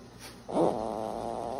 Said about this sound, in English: My life is just a series of videos. Like, I was just like, here's her snoring.